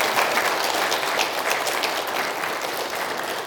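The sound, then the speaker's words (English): Steady applause from a large crowd honoring mothers fills the space, a dense wash of many hands clapping at once, sustained and even throughout with no voices standing out. “Let's give our moms a good round of applause, shall we?”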